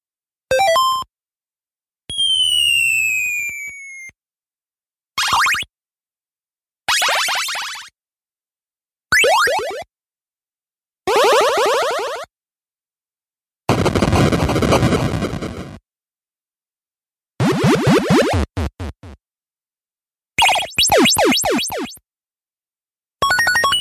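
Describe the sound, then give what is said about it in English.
Short bursts of bright 8-bit NES video game music and chirpy coin-like blips, about ten separate snippets split by brief silences, some with rising sweeps, others dense and buzzy. No one speaks. “but then like the coin noises are throwing me off, because that just makes it sound like Mario or something like upbeat.”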